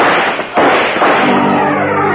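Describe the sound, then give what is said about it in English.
Two loud, sharp gunshots, fired up a spiral staircase, crack out about half a second apart, each followed by a long, rumbling echo that fills the pause. No one speaks. “A couple of bullets flew up the spiral and caught him in the chest.”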